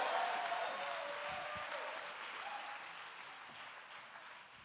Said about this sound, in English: You better shout and clap your hands if I'm talking to you this morning.